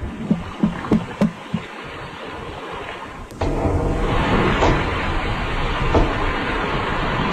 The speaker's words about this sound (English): I don't know a lot about underwater sounds, but it sounds like someone banging on a tiny submersible. I don't know if it's real or not, but anyway.